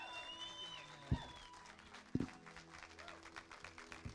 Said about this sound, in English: So would you do me a favor with the greatest applause you can? Would you guys give it up for Pastor Mark Johnston? Come on, right now, like you mean it.